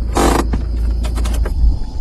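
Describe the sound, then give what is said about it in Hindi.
A car engine rumbles low and steady while the driver parks it, talking on the phone, with a brief harsh scraping burst near the start and a few soft clunks following as it settles. “… अपनी गाड़ी पार्क करते हुए फोन पर बोला।”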